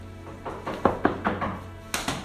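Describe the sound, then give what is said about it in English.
A series of firm knocks on a door, about four quick raps in an uneven rhythm followed by one more sharp rap, fairly loud with no voices. “Soon, there was a knock at the door.”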